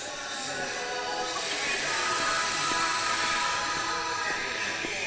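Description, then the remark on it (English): At 7:02, a train pulls out of the station in Kramatorsk, Ukraine, while the city anthem of Kramatorsk plays over the public address system. The music's tones are layered over a steady, broad mechanical rumble that stays fairly loud throughout, with no one speaking. “At 7:02 exactly, the train pulls out of the station, with the city anthem of Kramatorsk playing on the public address system.”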